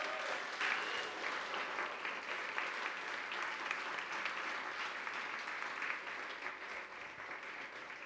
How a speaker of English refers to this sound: Come on up, seniors. Can we give a round of applause to the seniors?